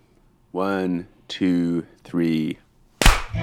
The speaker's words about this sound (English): 1, 2, 3. Oh, I think our internet is way better because our claps were much closer together in my ears.